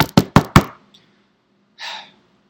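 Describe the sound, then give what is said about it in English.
Four quick, evenly spaced, sharp knocks on a door, followed by a pause and a brief breathy exhale. “I am such a good improviser that I anticipate there being someone at the door.”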